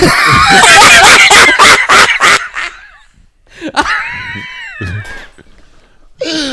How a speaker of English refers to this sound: you're so fucking loud. You're peeking in my ears. You're peeking out. You're screaming in the microphone.